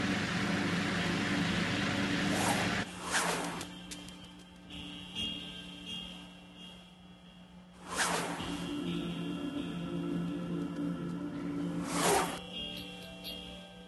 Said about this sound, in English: Here's an engine that you get to play with on the Hyundai site.